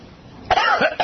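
A loud cough bursts out in two quick, harsh spasms, the second starting just as the first trails off, with a faint hum underneath and no talking.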